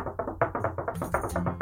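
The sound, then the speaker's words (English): Rapid, insistent knocking on a door, a steady run of about a dozen sharp raps with hardly a pause between them. “Some footsteps coming up towards the door, and now there's more insistent knocking.”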